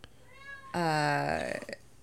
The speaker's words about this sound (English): My cat's yelling at you.